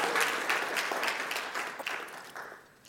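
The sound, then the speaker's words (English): An audience breaks into dense, steady applause, many hands clapping at once with a few scattered whoops, the sound holding strong before gradually thinning and fading near the end. “Why aren't you clapping and hooting and hollering?”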